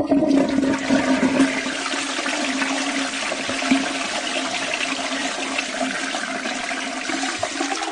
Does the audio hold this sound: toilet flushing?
yes